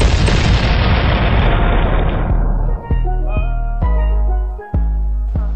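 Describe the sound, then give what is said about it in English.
A cannon is fired for a Tampa Bay Buccaneers touchdown: a loud blast booms and rolls into a long, rumbling roar. As it fades, punchy music takes over with several sharp hits. No one speaks. “Touchdown, Tampa Bay. Fire the cannon. Bucs lead.”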